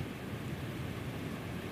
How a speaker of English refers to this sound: First night. Tucked up in my little microlite tent. And the sound of the Tasman Sea.